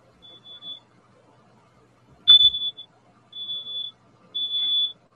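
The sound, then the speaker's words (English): A smoke alarm sounds in repeated high-pitched beeps, four bursts in a steady rhythm, fairly loud, with a brief low thump and a voice murmuring in the background. “I got the fire alarm going on.”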